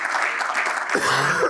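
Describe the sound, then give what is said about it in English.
A church audience claps steadily unto the Lord, a dense wash of many hands, with a low sustained tone and a few voices rising beneath the applause in the second half. “Somebody clap your hands unto the Lord tonight.”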